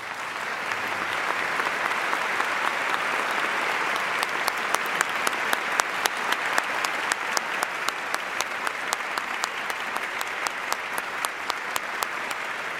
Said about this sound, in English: I'd ask them to stand, and I invite you to recognize them with a round of applause.